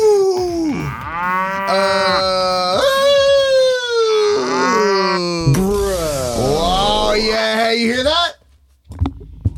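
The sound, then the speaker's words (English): Two long, loud cow moos from a toy championship belt, tapped twice, play back to back, slightly electronic, each with a wavering, sliding pitch before cutting off into near silence. “That's two taps from the Cow Championship belt, baby.”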